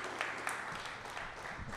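A steady round of applause welcoming the first guest of the evening, with dense, crackling clapping filling the whole clip at an even loudness and a few voices murmuring or cheering underneath.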